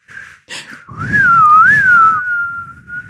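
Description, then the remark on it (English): A person with a cold sore whistles: a couple of short breathy bursts, then a sustained tone that swoops up and down before settling into a steady held note, with audible air noise underneath. “I have a cold sore right now, so it's hard for me to whistle.”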